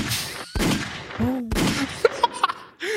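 Two sharp, loud gunshot sound effects ring out about a second apart amid a noisy background, with short vocal yelps and pitched voice sounds scattered between them, as if someone is mimicking gunfire.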